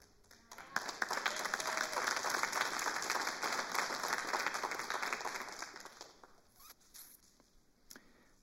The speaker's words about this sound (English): on your feet now, applaud God, that they just stood up and they actually just did that. They just authentically overflowed with thanksgiving towards our God.